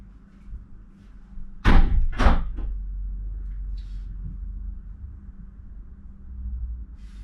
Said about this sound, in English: Shut the door. I was freezing.